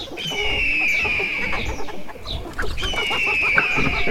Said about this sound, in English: There's one chicken who won't be laying any eggs tomorrow. My chicken!